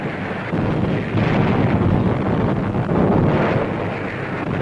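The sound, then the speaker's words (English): A loud, continuous roar of a pre-landing naval bombardment from warships, explosions blurring into a dense, rumbling wash of noise that holds steady throughout, with no voices. “First, our warships unleash a tremendous pre-landing bombardment.”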